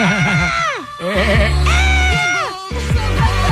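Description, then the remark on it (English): A goat screams in loud, wavering bleats, a screaming goat sound effect: several drawn-out cries in a row with brief breaks, each rising and then sagging in pitch, with no talking. “I'm sure Mama Jan was screaming like the screaming goats, too.”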